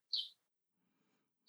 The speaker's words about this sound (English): But tell that bird we're making the show. Shut up, bird. Oh, let me close the window because that is kind of annoying.